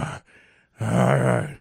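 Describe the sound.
A voice imitates heavy mouth breathing: a short huff and a quieter breath in, then a long, loud, raspy exhale with a throaty groan.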